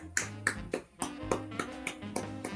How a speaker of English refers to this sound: What's your hidden talent, man? I could clap with one hand. You could clap with one What? So how do you do that?